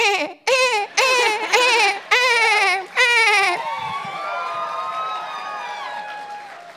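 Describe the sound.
A person's voice imitates a pregnant dolphin: about five loud, high-pitched squealing bursts in quick succession, then softer whistle-like tones gliding up and down.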